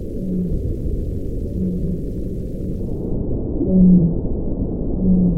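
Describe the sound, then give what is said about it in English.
Several short, low tonal calls of a baleen whale, recorded by a hydrophone dropped into the deep ocean, repeat every second or so, with one louder call near the end, over a constant dense underwater rumble. “We recorded several different baleen whale calls.”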